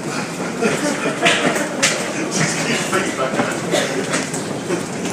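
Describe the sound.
Steady rumble of a train rolling along rails, with faint rhythmic clicks from the track. Muffled voices murmur underneath the continuous noise.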